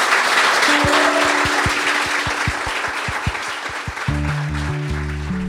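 A crowd applauds an interview guest steadily, a dense wash of clapping that lasts throughout, while music with a regular thumping beat and sustained chords plays underneath.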